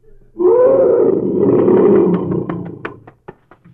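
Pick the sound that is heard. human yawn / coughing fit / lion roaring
lion roaring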